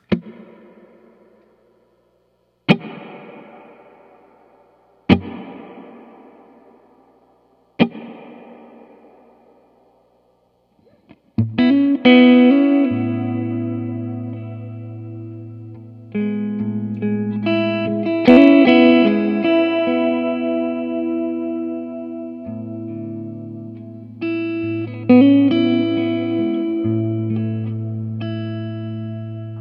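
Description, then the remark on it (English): Four separate guitar chords ring out through a modulated reverb effect, each fading into a long, wavering wash of reverb. Sustained chords follow, swelling and shimmering with a lush modulated echo. No one speaks. “how those modulate the reverb sound”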